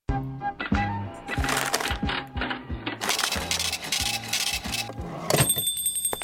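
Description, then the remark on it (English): A wobbly shopping cart wheel rolls along steadily, thumping in a quick regular rhythm beneath a rattling, scraping clatter, moderately loud throughout. “Wobbly buggy wheel.”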